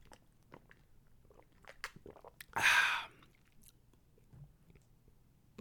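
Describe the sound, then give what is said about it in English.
Someone takes a drink of water during a water break: soft mouth and bottle clicks around one short, loud, hissing burst of sloshing or crinkling, then quiet sipping noises with no talking. “Water break, boss. Don't mind me, boss.”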